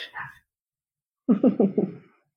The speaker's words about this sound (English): If you guys can hear my dog, I have more than one child and my dog is just living his life right now. Please excuse me. That's okay. I'm sure everybody will understand. Dogs bark and there's nothing we can do about it.